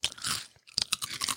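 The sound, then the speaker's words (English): Loud, crisp crunching of potato chips being chewed, a dense burst followed by a brief pause and then several more sharp, irregular crunches with no talking. “And we're eating chips.”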